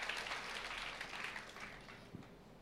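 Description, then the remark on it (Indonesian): A church audience claps for God steadily for a couple of seconds, a dense, even patter of many hands that thins slightly toward the end. The applause is fairly soft, with no voices. “Berikan tepuk tangan buat Tuhan, saudara.”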